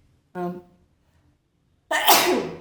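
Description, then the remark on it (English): A single loud sneeze: a short voiced intake of breath, a brief pause, then an explosive breathy burst that trails off. “Bless you.”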